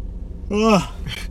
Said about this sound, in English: Oh my god. As soon as you said the word yawn, it actually made me... That was a maybe 10-second yawn. if you had to time it. Yeah, I wish I timed it and did it.